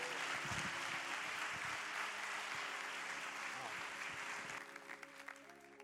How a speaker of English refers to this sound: Let's give our worship team a round of applause today.